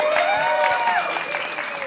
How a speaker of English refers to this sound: A lot of applause for a security guard. You must be good.